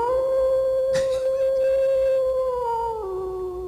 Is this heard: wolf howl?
yes